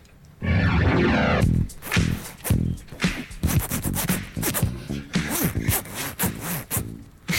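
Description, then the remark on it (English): A steady droning tone opens, then two zips are yanked open and shut in a rapid, irregular series of loud rasping strokes, some quick and short, others longer. “I've got actually got 2 zips. I can double zip.”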